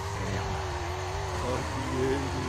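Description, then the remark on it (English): A car engine revs hard and steadily in a power burnout, a loud, continuous roar whose pitch wavers up and down over a couple of seconds. “Just a power burnout right there.”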